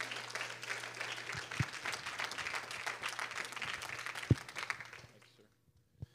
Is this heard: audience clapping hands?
yes